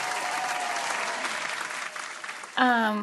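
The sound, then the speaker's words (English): A canned applause sound effect used as a virtual clap on Zoom: a steady, dense wash of many hands clapping for a few seconds, ending abruptly as a loud voice cuts in. “Well, I can't clap right now, so I'll do the I'll do the virtual clap.”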